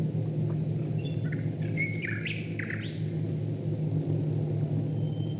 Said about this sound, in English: But in this recording, you can hear the sound of Royal Air Force bombers flying above the birds.